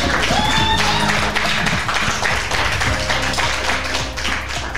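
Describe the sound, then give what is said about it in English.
An audience at a comedy show applauds and cheers for the comics: dense, loud clapping holds steady for the whole stretch, with a brief high whistle early on and scattered shouts mixed into the noise. “Make some noise again for all the comics you've seen so far.”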